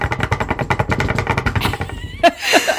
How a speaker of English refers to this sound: Sorry for all the banging. We're just knocking on all the wood we can find.